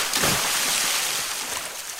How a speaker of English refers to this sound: Probably my top fave is the classic pool splash So not like a belly whacker, but just like a nice dive-in splash.